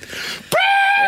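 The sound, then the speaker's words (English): A loud, high-pitched sung shriek from a man singing "and the land of the..." suddenly bursts in midway, bending upward and then holding one piercing, steady note to the end, following a stretch of muffled, noisy background. “It's a proper good shriek, man.”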